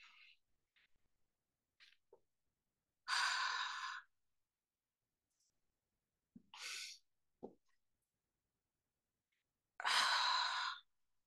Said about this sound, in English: Let a smile begin to form as you continue to breathe slowly and deeply. Deep breath in, smiling into every cell in your body. And exhale slowly through your mouth.